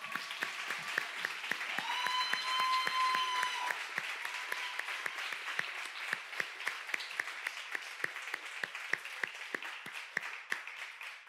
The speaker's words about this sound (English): You can clap for that.